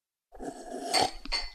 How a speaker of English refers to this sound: And happy St. Patrick's Day to all. Yeah, it is St. Patrick's Day as of cheers. Recording right now. So cheers, everyone. Slasha. Clink, clink.